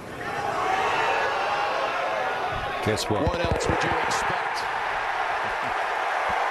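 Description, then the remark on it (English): A golf crowd erupts into a loud, sustained roar of cheering as Tiger Woods makes a putt on the 18th hole. The roar holds steady for several seconds, with a commentator briefly speaking over the noise. “So this is Tiger Woods making a putt on the 18th hole and the crowd going insane.”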